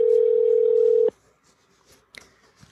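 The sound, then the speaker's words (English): A single steady ringback tone of a phone call to a friend rings loudly for about a second, then cuts off into near silence with a few faint clicks. “Answer the phone.”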